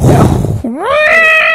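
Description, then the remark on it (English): A person imitates an elephant's trumpet: a raspy, breathy rush gives way to a loud, nasal vocal tone that swoops upward in pitch and holds, strained and shrill, for about a second. “That was my elephant. That's a horrible elephant.”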